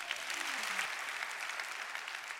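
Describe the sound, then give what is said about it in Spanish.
An audience claps steadily for a couple of seconds, giving applause to Christ during a Christian sermon, a dense, even wash of many hands with no individual claps standing out and no voices on top. “Denle un aplauso a Cristo, ¿no?”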